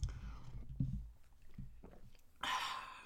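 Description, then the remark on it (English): A sip of Irish stout: a few soft mouth and swallowing noises, then a brief breathy, airy rush near the end. No one speaks. “Yeah, let me take a little sip of my Irish stout.”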